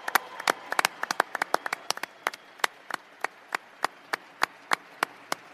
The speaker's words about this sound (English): I'd like to acknowledge the Sharks fans who are here in person. Give yourselves a great round of applause. Wonderful turnout.